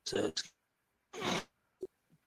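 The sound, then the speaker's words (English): A few harsh, breathy coughs: a quick pair at first, then a longer rasping cough after a short pause, followed by a soft low thump and faint noise. “Yeah, I just had a cough a little bit there.”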